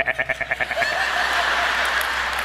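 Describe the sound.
A voice imitates a goat's bleat, starting with a rapid wavering stutter that settles into a long, nasal, sustained 'maa' sound, fairly loud.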